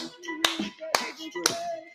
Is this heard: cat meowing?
no